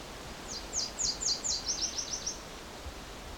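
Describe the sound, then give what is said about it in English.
A Nashville Warbler sings its alternate song, a rapid series of high, buzzy chirped notes, slowing slightly and fading toward the end, over a soft outdoor background hiss. “This is the other song that Nashville can have.”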